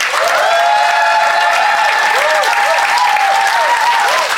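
The audience at the Phoenix breaks into loud, sustained applause to vote for one side of a debate, a dense wash of clapping that holds steady for several seconds, with a few whoops and cheers rising above it.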